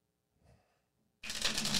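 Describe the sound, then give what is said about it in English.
A deck of playing cards is shuffled during a card trick: a brief soft rustle, a pause, then a loud, continuous fluttering riffle that runs to the end. No one speaks. “Now, tell me when to quit shuffling.”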